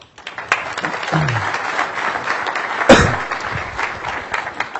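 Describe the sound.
An audience breaks into steady applause, a dense wash of many hands clapping at once that holds fairly loud throughout, with a sharper thump near the middle and faint voices mixed in.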